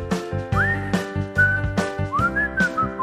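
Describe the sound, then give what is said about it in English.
A person whistles a short melodic tune, the pitch sliding up and down between notes, over a steady low rhythmic backing with soft percussive hits. “Great whistle.”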